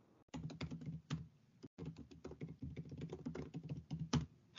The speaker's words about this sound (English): Anyway, I'm going to type my answer.